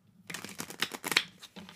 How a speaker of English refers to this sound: Because this is a new deck, I'm shuffling it a little bit.